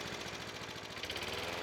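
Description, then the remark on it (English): A steady, droning lawnmower engine hums continuously in the distance, its low rhythmic chug joined by a buzzing whine, with no voices present. “And even the sound of a distant lawnmower.”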